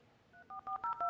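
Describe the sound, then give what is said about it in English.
Dial-up modem dialing tones from a portable modem plugged in at a house and connecting to a dial-up network: a quick run of about five short touch-tone beeps, each a steady dual-pitched tone, growing louder toward the end, with no voices. “I plugged it into a portable modem in the house to the dial-up network”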